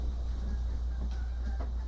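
Outdoors by a lake with trees, a steady, heavy wind rumble fills the scene while a couple of faint goose honks break through briefly. No one speaks.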